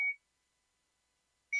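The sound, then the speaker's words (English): Two short, clear electronic beeps from a digital forehead thermometer held about an inch from the forehead, one at the start and one at the end with silence between them, fairly loud, with no talking. “I'm going to demo because it's sitting right in, you keep it about an inch from your forehead. You hear it beep.”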